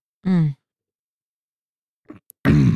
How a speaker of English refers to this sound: I'm sorry, I'm still fighting the urge to cough here.